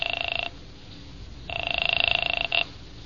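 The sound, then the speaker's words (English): An outgoing call on a borrowed telephone rings with a buzzy, trilling tone in two bursts, a short one then a longer one separated by a pause, as if heard through a receiver. “I used her phone and called Wanda.”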